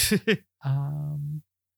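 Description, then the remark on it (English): Two quick breathy huffs, then a drawn-out voiced yawn that holds a steady low pitch for almost a second before cutting off. No other sound around it. “I'm yawning over here.”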